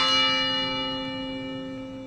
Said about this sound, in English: Both the vigil and a ringing of the bell tower, followed by a moment of silence yesterday afternoon.